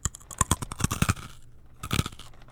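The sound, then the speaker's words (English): Crisp crunching of a Dole Sunshine Good Crunch pineapple snack: a rapid flurry of brittle bites for about a second, a brief lull, then another short burst of crunching, with no talking. “I'm going to try the pineapple.”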